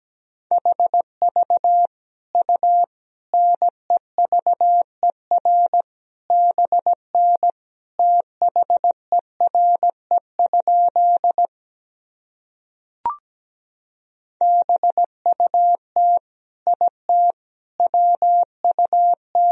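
Morse code at about 17 words per minute, sending practice sentences made from the top 300 words and abbreviations: a single steady mid-pitched tone keyed into quick short and long beeps, broken by a pause with a brief click before the sending resumes. No voices.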